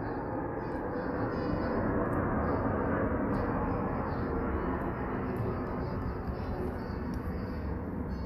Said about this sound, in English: We got another jet, y'all. Give me a minute.